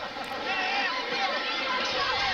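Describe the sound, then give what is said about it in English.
A large wrestling arena crowd of about 5,500 roars in a steady, dense wash of cheering and babble during a match between Bill Dundee and Dutch Mantell, loud and sustained throughout with no single voice standing out. “What a crowd. There's 5,500 here.”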